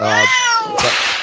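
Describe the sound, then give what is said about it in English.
A cat lets out one long, loud, whining meow that bends slightly in pitch, then breaks into a harsh, breathy, noisy burst. No one speaks. “while the streamers are still talking about the cat, so I'm just throwing that out there for our radio listeners”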